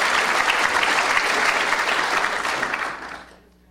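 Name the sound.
audience round of applause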